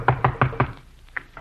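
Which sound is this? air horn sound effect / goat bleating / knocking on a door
knocking on a door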